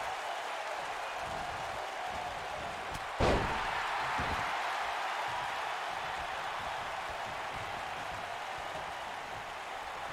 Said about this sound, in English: Belly to belly suplex. Front wrench suplex. His head hit that chair.